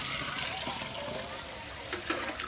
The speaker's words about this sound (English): At least twice each day, women farmers in this Indian village walk to one of the local wells, drop in a bucket, and haul up water.